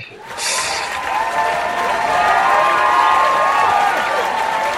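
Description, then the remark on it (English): A burst of loud, raucous applause from a crowd, steady clapping mixed with cheers and whoops, sustained at full volume for several seconds with no one speaking. “But being a podcast, the advantage is I can add in a raucous applause right now.”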